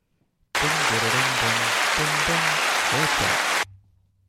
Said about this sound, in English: No, we just clapped at the fact that it's just gone horribly sideways.